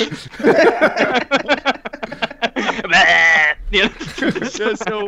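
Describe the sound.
Several sheep bleat in quick succession, their voices overlapping, with one longer, quavering bleat standing out in the middle.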